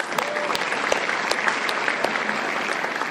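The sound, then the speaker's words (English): A crowd gives the speaker a final round of applause, clapping steadily in a dense, continuous wash, many overlapping hand claps forming a loud, even sound with occasional sharper individual claps standing out. “Can we give the speaker one last final round of applause?”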